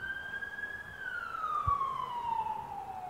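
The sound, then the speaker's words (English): An emergency vehicle's siren wails in a steady, sustained tone, its pitch sliding gradually lower as it passes by, with a faint low traffic rumble underneath and no voices. “And if that person died with that siren, they died and they went to hell”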